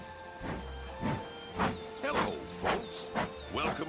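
The Disneyland Railroad steam train at the Disneyland Resort hisses in rhythmic bursts, roughly two per second, over a steady mechanical hum, setting off on a circle tour of the park. The puffs are moderately loud, with no voices.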